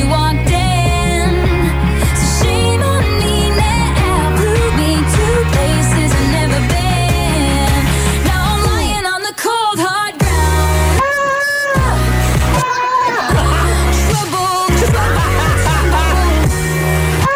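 A loud, steady pop track with a full band, where a goat's harsh, wavering screams, like a man yelling, burst in several times around the middle, briefly cutting through the music in place of the vocals.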